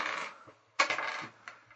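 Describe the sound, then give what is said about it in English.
Dice clatter and tumble across a table during a tabletop role-playing game, one rattling burst followed by a sharper second roll and a brief final tap, fairly quiet, with no voices. “This is an awful lot of dice rolling.”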